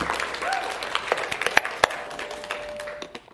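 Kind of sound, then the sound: crowd, audience clapping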